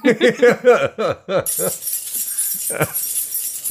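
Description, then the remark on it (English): A voice makes a quick string of syllables, then a bunch of keys jingles steadily and brightly for a couple of seconds, with a faint voice briefly underneath. “Let's get an ice cream truck, some jingling keys, just some jingling things.”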